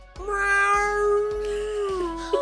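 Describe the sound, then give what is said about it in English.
A tigress gives one long, drawn-out meow that holds a steady pitch and sags slightly at the end, loud, with soft low thumps pulsing evenly underneath, as it calms while its ears are petted. “the tigress kind of begins to calm and begin to just kind of gently strut as it's getting its ears pet by Jeeves.”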